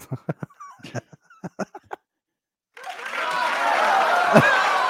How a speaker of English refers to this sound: Ooh, it's a controversial applause. No, they're saying bravo. Oh, they're saying bravo? Okay. I thought they were like, oh! No, they were saying bravo. Okay, bravo. Right. They're asking for an encore.